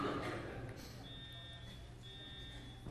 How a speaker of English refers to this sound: Can you all live with that for a minute? I'm quite sure it's a false alarm.